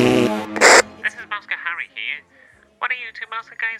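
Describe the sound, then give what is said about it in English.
A loud, raspy fart bursts out and echoes, trailing off briefly, from someone on a platform standing at the mouthpiece of a huge megaphone, then people start talking right after it. “I know we're stuck on a platform and there's nowhere to go, but I need to cut one.”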